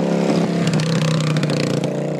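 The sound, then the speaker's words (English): A motorcycle engine revs loudly and steadily, a buzzing drone holding a constant pitch for a couple of seconds, with some rattly clatter mixed in and no voices. “Look at this fucking clown on the motorcycle.”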